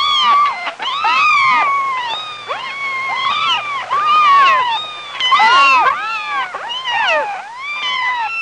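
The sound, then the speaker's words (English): Many high-pitched kitten meows overlap continuously, rising and falling in quick succession, loud, with no talking over them. “Let's just run the apology kittens under this entire segment of the show to make up for the fact that they fucked up the free roll again.”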